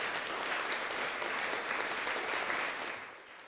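An audience at 701 Whaley claps and cheers wildly after a 30-minute music piece ends, in a dense, sustained roar of applause that stays loud throughout, then begins to ease off slightly at the end.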